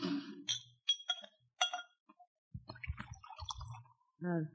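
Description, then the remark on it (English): A few sharp glass clinks ring out, followed by a low, bubbling glug of a drink being poured from a bottle into a glass, and a short voice at the end. “Hey, where's my drink? That bottle there. Huh? Pour me, will you?”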